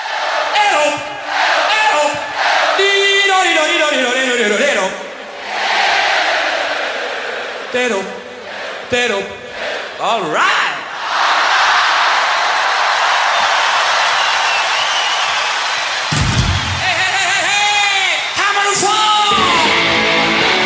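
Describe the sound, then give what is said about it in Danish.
A large live concert audience at a band's performance yells and cheers loudly in sustained waves, with the singer's lead voice calling out over them and rising shouts answering back, the roar filling the space throughout. “her fik … da lige sat godt og grundigt gang i det i forvejen varme publikum”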